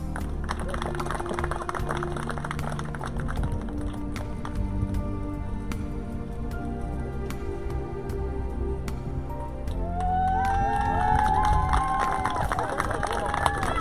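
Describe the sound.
A crowd applauds graduating senior track team members at a St. Margaret's school sports recognition, with dense, continuous clapping mixed with voices cheering; high whoops and shouts rise and grow louder over the final few seconds.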